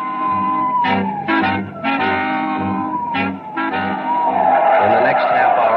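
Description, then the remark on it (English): Police cars in a dragnet roar in at speed with several sharp bursts of engine noise, then tires squeal loudly in a long, wavering skid near the end. Loud throughout, with no talking. “Cars in the dragnet had pulled in like a noose around a 5-mile area.”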